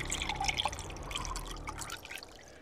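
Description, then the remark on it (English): Wine pours steadily into a glass for a few seconds, a bright trickling splash with a rising, ringing tone as the glass fills, then tapering off. “Oh, would you care for a glass of wine, perhaps?”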